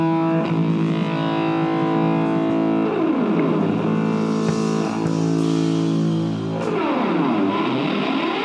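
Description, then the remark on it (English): Loud, sustained electric guitar feedback at the very start of a song drones on without a break, its distorted tones swooping down and back up in pitch a couple of times. No voices are heard. “It starts really, as soon as the song starts, it starts with this like guitar feedback.”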